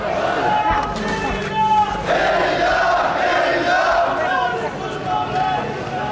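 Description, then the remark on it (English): A large crowd of families protesting in Madaya, Syria, chants and shouts "freedom" in unison, calling for the end of Assad's regime; many voices blend into a loud, steady roar with rhythmic rises as the chant repeats throughout. “Whole families had turned out to call for the end of Assad's regime. They're all shouting, freedom, freedom.”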